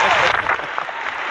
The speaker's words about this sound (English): Yes, the crowd, as we mentioned, going nuts. You got a lot of fans here in the Protonic Reversal Studios. Let it go, people. Sit down. Nice. A lot of digital crowd.